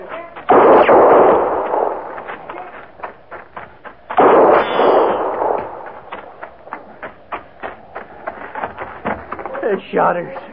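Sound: gunshots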